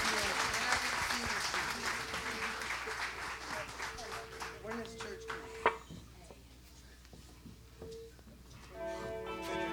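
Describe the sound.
A church audience bursts into a round of applause, dense clapping that fades out about halfway through, with some voices and a sustained musical tone underneath, then the music returns louder at the end.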